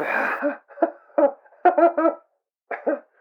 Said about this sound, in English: Oh, I was just sneezing, coughing a bit. Was it a sneeze or a cough? Both.